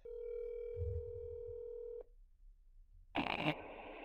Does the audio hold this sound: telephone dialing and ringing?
yes